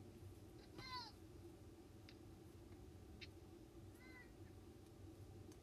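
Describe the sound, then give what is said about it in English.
A short, quiet cat meow rises out of a steady background hiss, followed a few seconds later by a second, fainter mew. No one speaks. “Anyways, I have no idea if you heard that meow, because it was kind of quiet, but I hope you did.”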